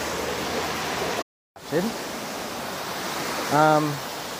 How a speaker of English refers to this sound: Anyway, I'll just pause what I'm saying for now. I'm right next to some water fountains, and I'm just going to grab a sneaker of photo.